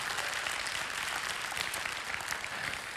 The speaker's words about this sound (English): What you can't see is all the people that are gathered in this place today. And they can't see you, but would y'all give them a hello this morning? Clap your hands, put them together.